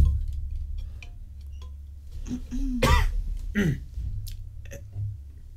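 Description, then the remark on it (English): Strained hacking coughs, as if something is caught in the throat: a raspy, gagging rise followed by two harsh bursts over a low background rumble. “Don't cough up a furball now.”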